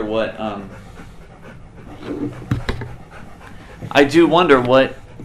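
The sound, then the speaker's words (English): A dog named Buddy pants heavily and steadily, its rapid breathy huffs running under a person's speech, with a brief sharp click partway through. “You know, but excuse Buddy's breathing.”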